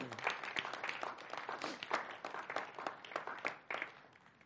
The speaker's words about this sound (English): Actually, why don't you go ahead and give her a round of applause for...